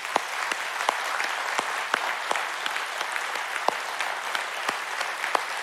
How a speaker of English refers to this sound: So let's give a what's called a clap offering to God. Ready?